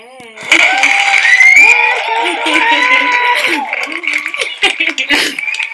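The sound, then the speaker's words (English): A group cheers and whoops loudly, their voices rising and overlapping, while scattered hand claps break through, growing more noticeable toward the end. “We gotta clap.”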